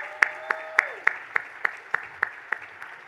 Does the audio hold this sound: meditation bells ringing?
no